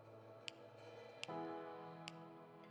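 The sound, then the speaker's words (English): A clock ticks three times at a slow, steady pace, each tick crisp, over a sustained, softly droning musical background with no voices. “Do you hear the clock ticking?”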